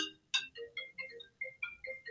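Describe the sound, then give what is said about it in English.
A mobile phone rings during a talk with a short electronic melody of bright, chiming tones that hop between pitches in a quick repeating pattern, fairly quiet, with no voices over it. “Should have switched my phone off.”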